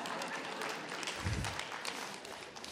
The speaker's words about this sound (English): I believe that's the men applauding. Isn't that right, women?